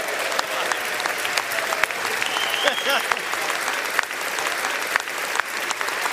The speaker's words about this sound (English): Members of both political parties welcomed him back to Congress with a rousing ovation, and with good reason.